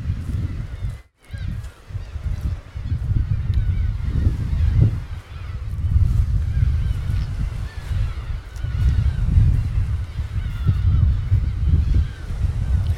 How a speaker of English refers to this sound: They haven't found much trash at all, but certainly a lot of seashells, pebbles, and an incredibly large flock of seagulls that you can maybe hear circling in the background.